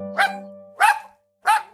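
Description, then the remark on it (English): A dog barks three times in quick succession, each bark short, sharp and loud, with brief pauses between them and no one speaking. “This sound, as you may have already guessed, is going to be for perro, which is dog in Spanish.”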